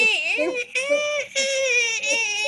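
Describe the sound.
A voice imitates the squeal a rabbit makes when it is dying and in pain: a high, wavering, whiny cry held for a couple of seconds, broken by two short gaps for breath.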